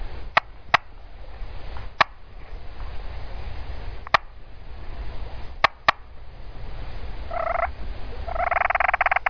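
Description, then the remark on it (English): A wild turkey that has circled in behind hunters calling it gobbles twice toward the end, a short rattling burst followed by a longer, louder one. Before it come several sharp isolated clicks over a steady low shuffling rustle of a hunter scooting around to face it, with no talking. “So that shuffling sound you hear right there, well, that's me scooting my rear end around, because this turkey circled us and came in behind us”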